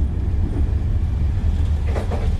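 A Dublin to Belfast train rolls steadily along the tracks with a continuous low, heavy rumble, fairly loud, and a couple of brief rattles toward the end. No one speaks.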